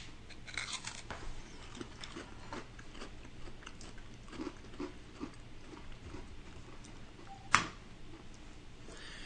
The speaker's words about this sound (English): I'm taking a very small bite of this.